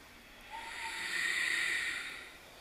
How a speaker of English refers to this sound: left, open your arms, breath of fire.